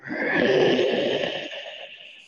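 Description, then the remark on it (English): A deep, rough growl rumbles steadily for about two seconds, strongest at the start, then slowly fades out. No one speaks over it. “And you hear a very low growl.”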